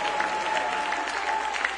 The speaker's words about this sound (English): Now would you clap your hands with great faith and praise, and one more time would you shout hallelujah, Jesus.